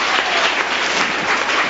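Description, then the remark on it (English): A church audience claps their hands together along with a worship song, a dense, steady wash of many overlapping claps at a loud, even level with no voices standing out. “Clap your hands some more on that.”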